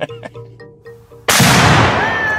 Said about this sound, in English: And because the Big 8-0 was such a milestone, we're going to help you celebrate with a bang. We're going to blow stuff up just for you.